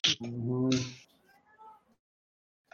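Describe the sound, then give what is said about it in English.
A loud, drawn-out meow from Weasley, a male cat, rising and wavering for about a second, followed by softer trailing sounds and quiet before a brief click at the end. “Was that a cat? It's Weasley. My goodness. He's a very loud boy.”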